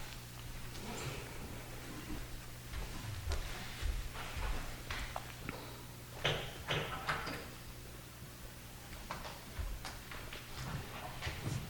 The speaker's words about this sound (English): And if you're someone who's going, if you don't mind kicking the stands and the doors so they close on the way out, that would be great.